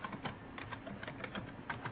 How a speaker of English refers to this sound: But I'm sorry, I was typing. Yeah, I know. I saw.